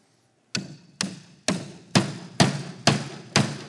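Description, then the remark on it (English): A hammer drives a really big nail into a thick, solid wooden door with seven sharp, evenly spaced blows, each ringing briefly. The strikes are loud, with no talking. “And this door is a lot thicker, so we need a lot bigger nail. A really big nail.”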